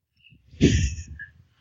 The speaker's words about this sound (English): Please forgive my sniffling.